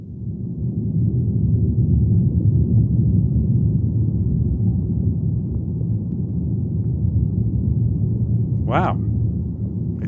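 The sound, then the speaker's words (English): A deep, continuous rumbling roar of tree leaves rattling in thunderstorm wind, recorded by a hydrophone plugged into the tree's roots, with a low throbbing texture that stays steady and loud throughout; a voice briefly exclaims near the end. “So that's the sound of, the leaves, I think, rattling on the tree in a thunderstorm.”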